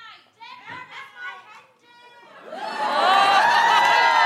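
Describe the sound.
A few raised voices call out, then a live audience erupts into loud, sustained cheering and whooping that swells and holds steady until the end, cheering in answer to being asked whether anyone is thinking about proposing.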